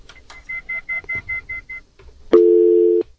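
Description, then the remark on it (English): A rapid series of eight short, even telephone beeps, like a fast busy signal, on a failed call because the phones are not working, followed by a brief pause and a louder steady tone lasting under a second, all clear with no talking. “Okay, the phones are not working for some reason.”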